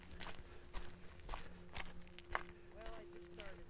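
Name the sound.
footsteps walking outdoors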